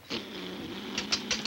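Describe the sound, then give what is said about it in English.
A loud raspberry blown with the lips, a sustained wet buzzing that runs for over a second and ends in several sputtering spurts. “He's giving him the old raspberry and the elk.”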